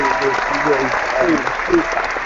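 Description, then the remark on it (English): Steady, dense clapping from many hands fills the whole stretch without a break, with voices talking and calling out faintly underneath the applause. “Wow, that's a really long clap.”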